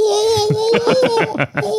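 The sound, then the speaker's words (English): A person imitates an Australian magpie's warble: a steady, mid-pitched warbling tone with a quick run of rhythmic pulses over it, loud and on its own, with no other talking. “Your magpie is pretty good. They warble.”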